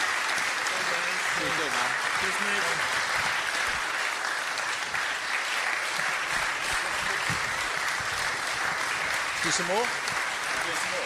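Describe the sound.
Sustained audience applause, a dense, steady wash of clapping from many hands, with faint voices and a cheer or two rising through it, given for a guest who is leaving.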